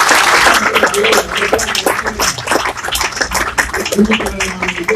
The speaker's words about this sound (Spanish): Demos aplausos al Señor.